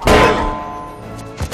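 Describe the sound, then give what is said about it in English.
A loud metallic bong of a frying pan hitting someone, its ringing tone slowly fading, followed by a second, shorter thump right at the end. “The ultimate weapon, frying pans from PUBG.”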